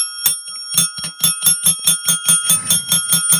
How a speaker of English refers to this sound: we just need three solid rings. That's too much bell. Whenever I'm editing it, I go like, the ringing. Anyway, that bike bell, the skull bike bell ringing, means we are going outside of our hat pulls